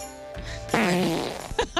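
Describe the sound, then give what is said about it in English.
A loud fart sound effect: a low rumble gives way to a long, wavering, buzzy blast, followed by a couple of short sputtering pops. “Big rippin' farts.”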